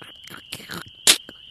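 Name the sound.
campfire crackling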